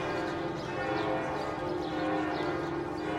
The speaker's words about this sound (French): L'ombre monte doucement sur la façade de Notre-Dame qui fait entendre ses cloches au crépuscule. Leurs sonorités veloutées et chaudes retentissent dans le jour qui baisse, pendant que la Seine laisse monter la fraîcheur de ses eaux.